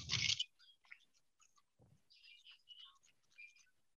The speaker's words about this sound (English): I will roll far too many dice and not get any successes.